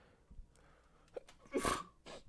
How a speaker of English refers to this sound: Sorry about that. Really had to sneeze.